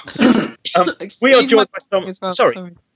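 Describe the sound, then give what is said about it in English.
A single loud cough bursts out at the start, then a voice follows with a few short spoken phrases. “No, I'm just saying, excuse my coughing.”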